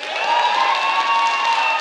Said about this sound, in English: So I want to do something. I want to ask you to clap and shout when I say the word generosity. Okay? All right, ready? Generosity.